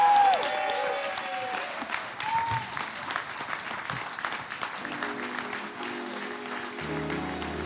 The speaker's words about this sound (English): Look at the people clapping. Look at the people clapping.